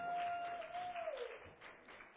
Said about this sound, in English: All righty. Let's give a great round of applause for our volunteers this morning.